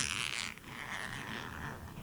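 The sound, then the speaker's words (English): A zipper on a clothing sleeve being undone as the sleeve is taken off: a steady, raspy scraping that runs for about two seconds with a brief catch partway through, quiet, with no voices. “He's taking off the last sleeve he has. I don't know why there's a zipper on it.”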